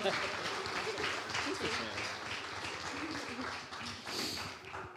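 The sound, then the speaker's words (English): An audience applauds steadily for several seconds after a prayer, a dense wash of many hands clapping at once, fairly loud, with a brief swell near the end before tapering. “Now you can clap”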